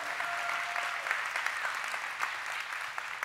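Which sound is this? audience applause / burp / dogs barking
audience applause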